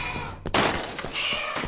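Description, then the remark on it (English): Window glass shatters with a sudden loud crash, followed by a bright, sustained spray of tinkling shards and scattered debris clattering for over a second, with no voices. “The shrieker was coming in through the broken window.”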